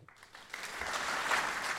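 Applause from an audience welcoming a keynote speaker swells up and holds steady, a dense crackle of many hands clapping together that grows louder over a couple of seconds, with no voices over it.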